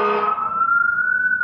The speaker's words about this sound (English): I've got some sort of like fire going on. Sirens, yeah. Yeah, there's a fire truck. Hoboken is burning.